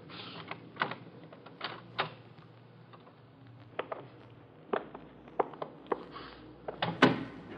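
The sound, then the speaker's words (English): A museum door being opened, with a run of sharp clicks, rattles and knocks from the handle and latch at an uneven pace, louder toward the end. No one speaks. “this door might do it.”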